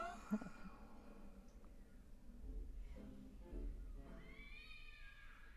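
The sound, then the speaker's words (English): A dense, overlapping chorus of cat meows and yowls, every cat sound effect from a library played at the same time, layered into a continuous, warbling wail over a low rumble, moderately quiet throughout with no speech. “This is literally every cat sound effect from the library you could play at the same time.”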